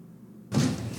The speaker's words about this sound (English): He felt the lift stop on the 4th floor. The door opened, but no one stepped in.